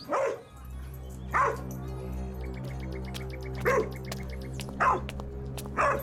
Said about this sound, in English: What are you two looking at? I'm not sure, but the dogs are going crazy over it.